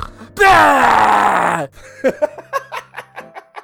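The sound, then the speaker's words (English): A voice imitates loud snoring with one long, rasping, strained groan, followed by a string of short, rhythmic snorting huffs that trail off. “That's how he snores.”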